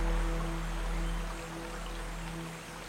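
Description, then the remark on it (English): A soft, steady wash of running water, like a gentle stream or light rainfall, continues evenly throughout, with a faint low hum beneath it and no voices. “Water.”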